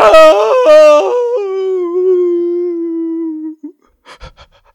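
A single voice lets out a loud, exaggerated anguished wail, breaking and jumping in pitch like a yodel before holding a long falling cry, then a few short ragged breaths.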